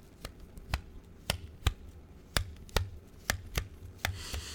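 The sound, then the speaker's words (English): A slide phone with a slide-out number pad is snapped open and shut over and over, giving about nine crisp mechanical clacks at an uneven, quick pace against a quiet background, with no talking. “That is a slide phone sliding back and forth.”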